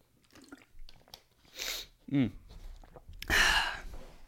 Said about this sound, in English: Give me a second. Let me grab up some water. I got water right here. Let me get a drink. My throat's like dying.